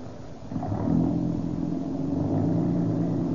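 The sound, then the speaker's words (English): An old car's engine, running on Rio Grande gasoline, runs steadily with a low, rumbling drone that swells slightly as it revs, fairly loud, with no talking over it. “This old car's got a lot of pep.”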